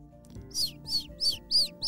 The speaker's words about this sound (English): Remember, this was a specially trained messenger bird. This bird knew exactly where to fly and how to get back to HQ.